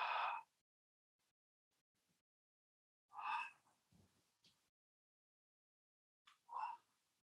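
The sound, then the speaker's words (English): Three short, breathy mouth breaths spaced a few seconds apart, each a soft airy rush of inhale or exhale, fairly quiet, with near silence between them and no talking; a breathing exercise of long, deep mouth inhales down to the belly and exhales without holding the breath. “So you open your mouth, start taking that long inhale. And then exhale.”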